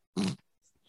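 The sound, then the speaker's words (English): A single short, breathy snort from a cat named Booger that breathes through its mouth, a burst of rough low-pitched air lasting a fraction of a second, followed by faint snuffling sounds. “He's always breathing with his mouth.”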